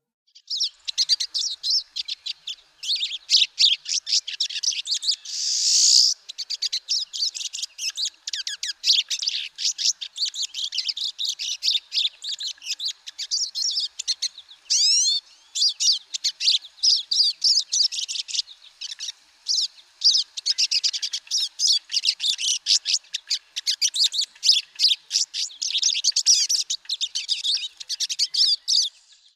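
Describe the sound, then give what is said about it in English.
Pine siskin calls and song: a steady run of buzzy, twittering chirps and raspy trills, continuous for about half a minute, with rising zreee notes mixed in and no voices. “So that's the sound of the pine siskin.”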